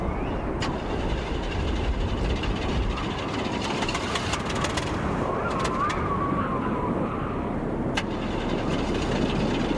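A new car's engine cranks and turns over steadily during a severe winter storm, a dense low rumble filling the whole stretch, with sharp clicks and rattles breaking through now and then.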